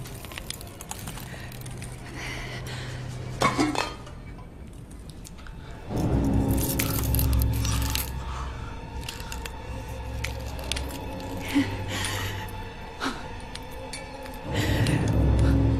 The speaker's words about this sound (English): Now, when we meet …, she is eating glass.